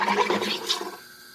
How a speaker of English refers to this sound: I get excited when I see those bubbles because it means it's going to be carbonated. It's rising.